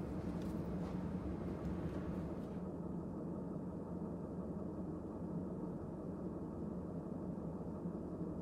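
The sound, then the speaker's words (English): A train idles at a station with a steady low engine rumble. In the first few seconds, brief hissing and clattering come from the doors unlocking, opening and closing as passengers get off, before the rumble settles. “Now arriving at the next stop, the doors unlock and the carriages can be heard opening and closing as people alight the train.”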